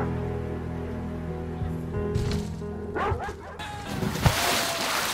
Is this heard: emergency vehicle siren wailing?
no